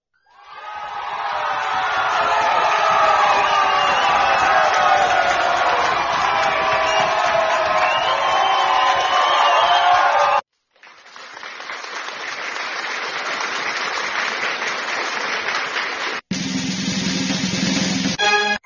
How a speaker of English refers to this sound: So let's give a big round of applause for y'all listening to that.